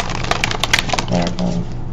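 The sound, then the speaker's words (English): A deck of tarot cards being shuffled during a reading: a quick burst of crisp, papery flicks and snaps lasting under a second, followed by a faint murmuring voice. “Let me shuffle these up real good.”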